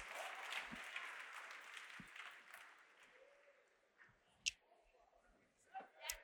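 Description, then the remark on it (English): An audience claps in praise to the Lord as people take their seats, a dense wash of many hands applauding that gradually fades, leaving scattered individual claps and a few sharp louder claps at the end. “Come on, give the Lord a hand clap of praise as you take your seats.”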